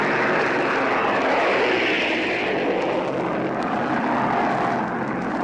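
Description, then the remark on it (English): Loud, steady roar of aircraft engines passing low overhead a ship off the shore, one plane just clearing the ship's stack, a broad droning rumble that fills the whole clip with no voices, swelling slightly in the middle before easing off. “Now planes are going overhead.”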